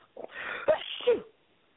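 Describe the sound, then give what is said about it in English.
A single sneeze: a breathy, hissing build-up followed by two sharp voiced bursts, fairly loud and heard on its own with no talking. “Bless you.”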